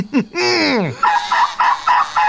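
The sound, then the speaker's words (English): A father blows a turkey call: a strained, descending call with stacked harmonics sweeps down, followed by a rapid series of five short, rhythmic gobbling bursts. “Ooh, if Daddy blows that thing again, he's gonna be living with Grandma and Grandpa.”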